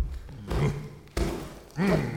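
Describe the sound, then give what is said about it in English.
Someone stomps on a garden: three heavy, muffled thuds land at a steady, deliberate pace, each rumbling briefly, with short voiced noises mixed in with the impacts. “You're stomping my garden. Stop stomping.”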